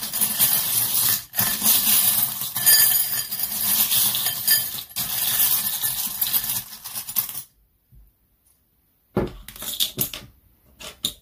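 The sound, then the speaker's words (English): Small hard divination charms, including a pyramid-shaped die, are tossed during a reading. They rattle and clink together in a busy, bright jingle for several seconds, then go quiet before a shorter burst of clinking near the end. “Let's finish off your reading with the charms.”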